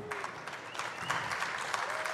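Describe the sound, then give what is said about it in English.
An audience at a supply chain industry presentation claps steadily for about two seconds to show how they are feeling, a dense, even patter of many hands at moderate loudness with no single standout claps. “First thing, by a round of applause, how's everyone feeling today?”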